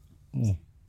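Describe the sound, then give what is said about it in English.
A short spoken word is followed by a sudden, bright clink of glasses of double IPA beer in a toast right at the end, one sharp hit against quiet background noise. “This cheers, guys. Cheers.”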